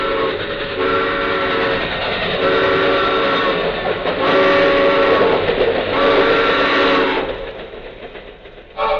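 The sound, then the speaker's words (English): A loud train roars past on railroad tracks, a sustained rumbling rush with metallic, whistle-like tones layered over it, the noise swelling and then easing off near the end. “The train! Look out!”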